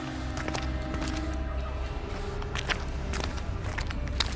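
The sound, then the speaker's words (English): A steady series of footsteps at an unhurried walking pace, each step a short crisp tap, heard over a constant low rumbling hum with no talking. “Don't turn around. I know. We keep walking.”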